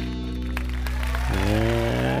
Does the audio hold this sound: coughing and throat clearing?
no